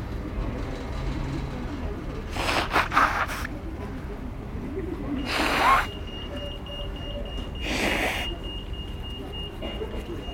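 Train door-closing warning tone at a station, a thin, high electronic sound that comes in partway through and holds steady over the low rumble of the train, with bursts of hissing air.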